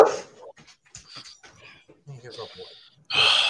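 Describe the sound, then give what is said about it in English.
A dog barking at the mailman lets out a loud bark-like burst, then whines and yelps in short broken sounds before another loud bark at the end, with a voice heard faintly under it. “He does not like the mailman.”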